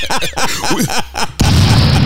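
Brief voice-like sounds give way to a sudden, loud explosion that bursts in and keeps rumbling with dense noise through to the end.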